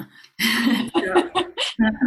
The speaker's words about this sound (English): Losing my voice there for a second. A little spider, they said. The singer says we have a little spider in the back of the throat. Let me clear my throat.